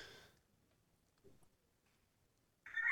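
A rooster bursts into a loud crow near the end, following a mostly quiet stretch with a brief murmur of sound at the start.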